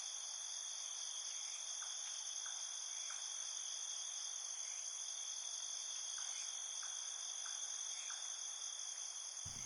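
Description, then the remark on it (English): Insects sing at night in a steady, high-pitched chorus of overlapping trills, with faint intermittent chirps scattered underneath. The sound stays constant throughout, with no voices. “Night brings about its own unique sounds, the sounds of insects singing.”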